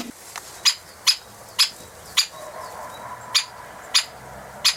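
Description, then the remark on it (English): A great spotted woodpecker gives a series of sharp, high 'kick' calls, about eight of them at irregular half-second intervals, clear against a quiet outdoor background. “Today's Tweet of the Week is a little bit of exotica. It's the great spotted woodpecker.”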